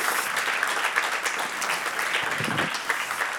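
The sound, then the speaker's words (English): A crowd gives God a round of applause, clapping steadily, dense clapping forming a sustained, even wash of sound that holds at a fairly loud level throughout, with a few sharper claps standing out. “And so can we give God a round of applause for...”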